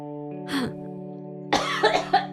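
A single harsh cough, then a short choking fit of three rough coughs in quick succession, over a steady low droning tone that holds throughout.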